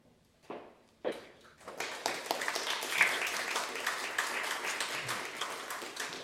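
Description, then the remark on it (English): Applause from an audience at a public Q&A session at the St Kilda Army and Navy Club on Ackland Street, St Kilda, starts with a few scattered claps, then swells into steady, dense clapping that carries on at an even level to the end, loud. “That's great applause for just turning up.”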